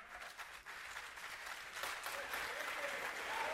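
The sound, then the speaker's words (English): Steady applause from an audience, a dense patter of many hands clapping that swells slightly in volume and continues throughout, with no one speaking over it. “Yeah, let me get my applause.”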